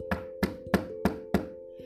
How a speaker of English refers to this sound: Suddenly, a knocking was heard at the city gate.